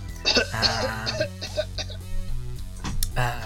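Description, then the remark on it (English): A bout of harsh, raspy coughing, several rough bursts in quick succession with throat-clearing sounds, fairly loud, with no talking. “you start coughing quite badly.”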